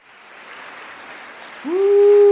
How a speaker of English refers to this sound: Giving y'all a big round of applause.